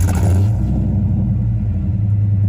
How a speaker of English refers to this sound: That might be one of the best V10 exhausts I've ever heard. I think it sounds awesome. Isn't that amazing?